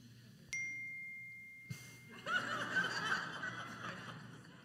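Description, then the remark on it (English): A single bright cell phone notification ding rings out clearly and fades over about a second during a church sermon, then a room full of people breaks into scattered laughter and murmuring. “Right, we have these gentle reminders to let us know that our cell phones are there, that they are with us.”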